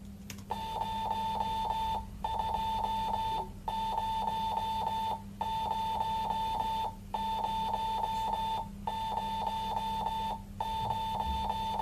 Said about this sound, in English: Okay, so what was that? Clearly that was Morse code over FM radio